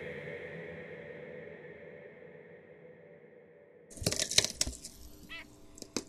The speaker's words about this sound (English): I have a very talkative cat, and he's commenting on the whistlers that are so nice. Right, Rocky? The whistlers are very nice.